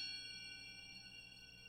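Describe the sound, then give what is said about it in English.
A quiet metallic ring, like a hammer struck on bell-like metal, its bright overtones sustaining steadily and fading only slightly over a couple of seconds, with no voices present. “There's that hammer sound. But just like a hitting a like a like a bell almost.”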